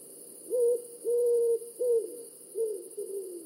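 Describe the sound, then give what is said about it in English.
An owl hoots about five times in a slow, uneven series, clear, each low hoot rising briefly then holding steady, with no one talking. “Owl is reminding us that it's time for some fun with interrogative pronouns.”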